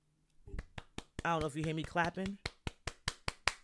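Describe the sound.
One person claps steadily, about sixteen sharp, loud claps at an even quick pace, while a voice vocalizes briefly over the middle of the clapping.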